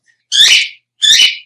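A pet bird that has flown around the room and landed on a bookshelf gives two loud, bright calls, each about half a second long with a short gap between, harmonically rich and slightly buzzy, with no talking.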